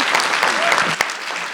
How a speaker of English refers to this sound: Would you join me in giving them a round of applause and thanking them all for being here? I so appreciate it.